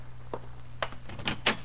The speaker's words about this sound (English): Well, it was beginning to turn gray outside, and the jarring thump of the paper grazing my door told me a new dawn was with us.